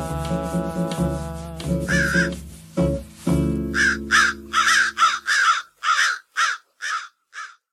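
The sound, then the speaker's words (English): Crows caw repeatedly and loudly: a few long harsh calls overlapping at first, then a rapid series of about ten short caws in quick succession, with no talking. “And so will the crows.”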